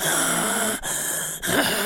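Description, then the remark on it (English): A voice imitates the heavy, labored breathing of a woman whose face is swollen and bloated and who cannot breathe: three loud, raspy, wheezing breaths in a row, each separated by a brief catch, strained and noisy like someone struggling for air. “And like, she walks into the light a little bit, and you see that her face is all big and bloated up, and she's breathing like...”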